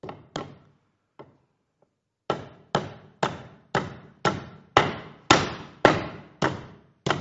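A hammer drives a nail with about a dozen sharp, ringing blows. A few tentative taps come first, then a steady, even rhythm of strikes that grow louder. No voices.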